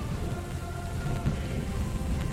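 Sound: heavy rain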